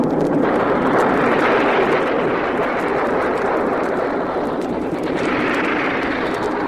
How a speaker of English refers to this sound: Something burning is falling down through the sky. And circling down. Maybe a hit plane.